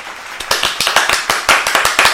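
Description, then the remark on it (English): A canned applause bumper sound effect: many hands clapping in a dense, steady patter with sharp individual claps standing out, lasting a couple of seconds with no talking. “Was that us clapping and the bumper? Yeah. Okay. Yeah, they're cheering for us.”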